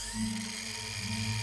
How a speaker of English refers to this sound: Sawing complete. Proceeding to remove the rib cage.